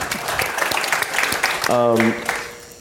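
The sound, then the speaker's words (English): A few scattered, sparse hand claps in a loose, uneven rhythm at an event aboard a cruise ship, followed by a short voiced cheer. “I get two claps, really?”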